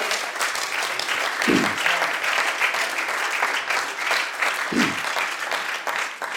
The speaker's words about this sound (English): Would you clap your hands unto the Lord today?